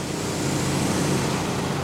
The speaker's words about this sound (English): It's a 24/7 operation, and on this warm autumn night, streetlights illuminate a steady arc of water as a worker with a fire hose sprays an incoming truck.